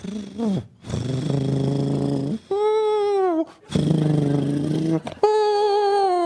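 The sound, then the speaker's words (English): A voice imitates a sleeping cat snoring, a sound from Radiolab: two cycles, each a low, buzzy rasp for about a second, then a higher, whistling whine that dips slightly in pitch, loud and alone. “That was a sleeping cat from your show about”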